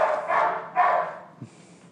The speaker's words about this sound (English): then she can go into that nervous barking, more excitement. And the other dog's probably helping her trigger that as well.